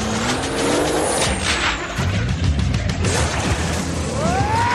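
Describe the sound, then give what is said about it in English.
A Lamborghini sports car's engine roars loudly while tires squeal in sliding, rising-and-falling screeches, with rumbling, grinding commotion underneath as the car lurches and is dragged down into a hole, continuous. “First he's just trying to pull the car back up, but all of a sudden there's a bigger hole and the Lamborghini's down in it.”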